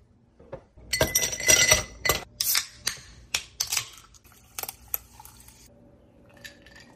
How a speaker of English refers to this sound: So I am going to put some ice in a glass, cool it off that way.